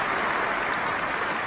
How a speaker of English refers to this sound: And the crowd applauds.